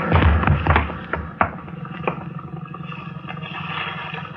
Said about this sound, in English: No. Thanks. If you hadn't pushed me, I'd have gone over. I just can't understand the rail breaking that way.